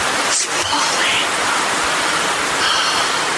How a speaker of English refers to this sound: Feel the rain.